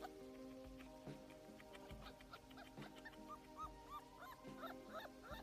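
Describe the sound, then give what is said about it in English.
A husky puppy whimpers and yips over and over, high rising whines mixed with short sharp yelps, fairly loud, with no one talking. “It's a puppy. It don't know no better. It don't know what's going on. It's upset that the ground's different.”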